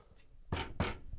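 A heavy old metal fireproof vault door of a film storage vault thuds shut, two deep, solid impacts in quick succession, loud, with a short ringing tail and no voices.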